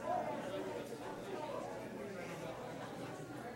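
A steady murmur of many overlapping voices, a crowd chattering at an even, moderate level with no single speaker standing out.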